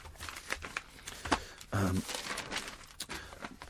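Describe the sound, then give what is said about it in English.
A single short, throaty, genuine cough bursts out over a steady background of paper rustling and crinkling, with soft shuffling and tapping before and after. “that cough wasn't me being sarcastic, it was a genuine cough”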